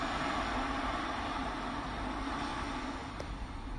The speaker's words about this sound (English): Listen to the ocean in the background.